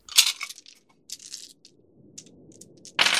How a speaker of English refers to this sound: Oh. I had to break out the physical dice for that, yeah.